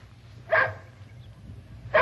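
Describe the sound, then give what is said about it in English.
A dog gives two short, sharp barks about a second and a half apart, clear over a low, steady background rumble, with no voices. “Stay, boy. Good boy. Good dog.”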